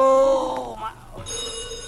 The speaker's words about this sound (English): Oh, my. Uh-oh, there's the phone again